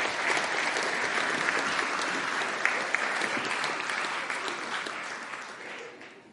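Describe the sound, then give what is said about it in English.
A crowd at a service applauds steadily for about six seconds, a dense wash of many hands clapping at an even loudness before easing off slightly at the end. “So let's give these guys a round of applause.”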